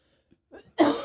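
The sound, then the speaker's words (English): A single loud, harsh cough bursts out, preceded by a few quieter throat rumbles, with no talking. “I cough all the time.”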